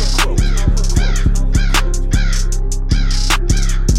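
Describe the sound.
Loud crows cawing over and over in a rapid, overlapping series of harsh, raspy calls that fill the whole stretch without pause.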